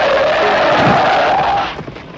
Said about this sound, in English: But this scene gets interrupted because a car comes screeching through town and dumps that kid out on the street.